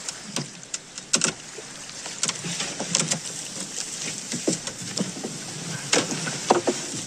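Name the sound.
boat on water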